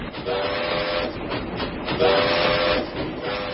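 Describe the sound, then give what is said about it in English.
A train draws near at about 3 in the morning, its whistle sounding in long, steady tones over a broad, continuous rumble and hiss, loud, with no voices. “A train starts coming, and the lights start coming on, and, you know, it feels like the entire building is being shook, and, you know, all of a sudden, it feels like it's right there”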